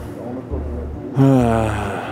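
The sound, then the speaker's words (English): Heavy, labored breathing of a man running up stairs while wearing a mask, rasping in and out; it starts muffled, then swells into a louder, strained gasp partway through. “He runs up the stairs, breathing hard because of his mask, looking for a county IT employee.”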